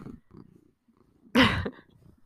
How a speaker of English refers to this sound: Now he's purring. I don't know if you can hear him.